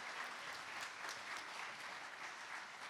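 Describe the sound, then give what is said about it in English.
Steady applause from a sizeable crowd for the people who put on events, games and shows for the kids, a dense wash of many hands clapping at once, sustained at an even level for a few seconds with no voices standing out. “They did the stage, all you're going to see in these pictures, but can we give them a huge round of applause for the work they did, time sacrifice for our kids here?”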